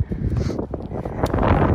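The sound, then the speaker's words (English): Steady wind gusts buffet the microphone with a deep, rumbling roar, loud, with no voices, just continuous blustery noise at Tullan Strand beach near Bunduran. “We are now at Tullan Strand, close to Bunduran. It's a bit windy, so I won't be recording for too long, because I'm not sure if you can hear me well”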